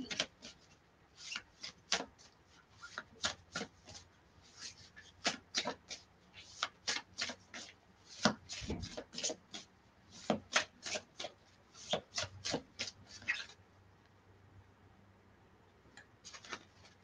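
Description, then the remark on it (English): A deck of cards being shuffled by hand, a long run of quick, crisp riffling bursts and slaps repeating irregularly for several seconds, fairly loud with no voices over it. “Oops. Bad shuffling.”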